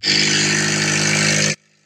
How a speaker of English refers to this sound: And so then I go to take her to the car place to get it fixed, and this is what we hear whenever she turns on her car. Here.